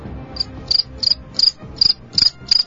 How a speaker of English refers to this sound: See, even the crickets are excited. They're going crazy.